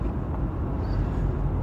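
A steady, low rumble of car traffic on Interstate 93 in the underground Big Dig highway tunnels in Boston fills the whole moment, continuous and fairly loud with no breaks or distinct passing vehicles, and no one speaks.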